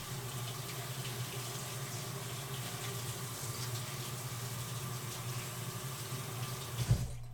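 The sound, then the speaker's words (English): Tap water runs steadily into a sink for several seconds, a continuous rushing hiss, with a brief clatter near the end as something used for stirring is rinsed under the stream. “Let me just clean this.”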